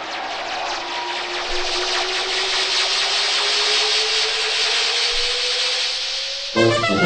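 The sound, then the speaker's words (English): A scooter's small motor whines and hisses, its pitch climbing steadily for several seconds as it revs up and pulls away, then cutting off abruptly. No one speaks. “Mrs. Bummer has been getting into the scooter, even as we spoke.”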